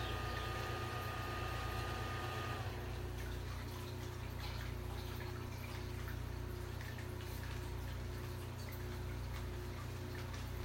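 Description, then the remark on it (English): Water is poured into a coffee machine's reservoir, a steady, continuous splashing rush. A low mechanical hum sounds under it during the first few seconds, and no one speaks. “Always wise to fill up the machine as well before you try to make coffee from it.”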